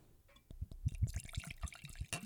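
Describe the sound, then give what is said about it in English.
Local Long Beach whiskey glugs and splashes as it's poured from a bottle into a glass, a quick burst of bubbly gurgles, ending with a brighter splash near the end. “I'm sorry, I'm just moving this stuff out of the way so you can pour into the glass.”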